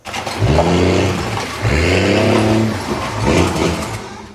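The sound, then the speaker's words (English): A stolen pickup truck's engine revs hard in three loud surges as it is driven through the front of a convenience store in Horseshoe Bay, West Vancouver, its pitch climbing and falling with each push of the throttle, with a brief lull between bursts and no voices. “West Vancouver police are investigating after a stolen pickup truck was driven right through the front of the Bay's convenience store at Royal Avenue and Bruce Street.”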